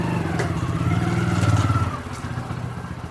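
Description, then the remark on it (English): A motorbike ridden by an arriving woman, its engine's buzzing drone growing louder and rougher before easing off and settling to a lower idle, with no voices. “I drop in on the nerve center of one of the most energetic groups, headed by a cheerful, determined woman in a brilliant blue and green tunic over bright green pants, who arrives on a motorbike.”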